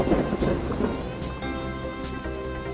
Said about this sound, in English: There's a stroke of lightning.